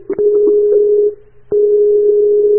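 A Skype call's ringing tone while the call fails to connect: two long, steady electronic beeps separated by a brief pause, loud, with no voices.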